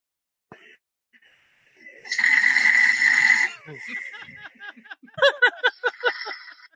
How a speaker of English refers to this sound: It's quiet snoring, which is... That's quiet snoring. Then it's got medium level snoring. And then it's got epic snoring.